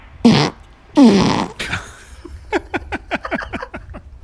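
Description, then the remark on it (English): A fart: two long, loud, buzzy blasts with a wavering pitch, then a quick trailing series of short sputtering pops that fade out. No one speaks during it. “There's … parts. Warming up to play the trumpet.”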